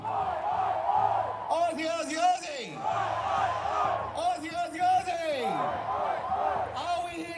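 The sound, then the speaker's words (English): A large crowd cheers and chants in loud, rhythmic bursts in response to a call of "Aussie, Aussie, Aussie", with rising shouted calls repeating in waves over a constant roar of many voices. “Can I hear an Aussie, Aussie, Aussie?”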